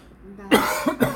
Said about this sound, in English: Hopefully, if we get better mics, they won't pick up coughs as bad.